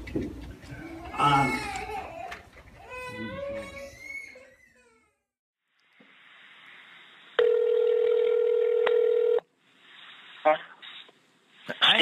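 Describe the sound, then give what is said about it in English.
Telephone dialing tones over a phone line as a call is placed to a man: a steady, loud electronic tone holds for about two seconds, with a few brief beeps around it, after some earlier voice-like sounds and a quiet pause. “Before church was even out that day, I had called that man on the phone.”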